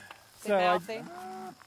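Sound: cattle mooing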